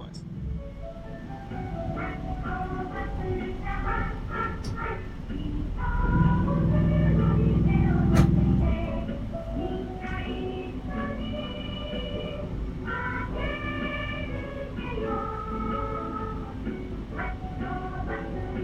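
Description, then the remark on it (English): A small city minibus decorated like a dog rumbles past on its route around Shibuya, its engine swelling loudly for a few seconds amid busy street noise, with a melodic jingle and voices chattering in the background. “Ah, the dulcet tones of the Haichiko bus, the little mini bus decorated like a dog that rides around Shibuya, gets you from and to the places where the metro doesn't go.”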